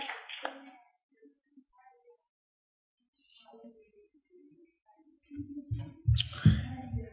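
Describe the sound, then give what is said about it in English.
At a church service, a brief burst of hand claps opens, followed by a few faint scattered sounds, then the audience breaks into loud, dense clapping in praise to God with a low rumble underneath for the last couple of seconds. “Clap your hand like you know it's all right now.”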